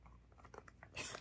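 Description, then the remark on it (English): A dog named Paulie, a brand new dog, gnaws on a bone with a series of irregular crunching and scraping bites ending in a louder, harsher grinding burst. “That's him chewing on a bone.”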